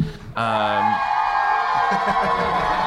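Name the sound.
crowd cheering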